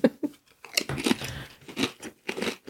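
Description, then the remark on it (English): Crunching of prawn cocktail flavoured crisps: a series of sharp, bright bites and chews in an irregular rhythm, loud, with no talking. “At least crunching is a nice sound.”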